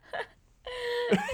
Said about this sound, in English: I have so many hiccups right now because I just found so much vodka in my mouth. So I have so many hiccups.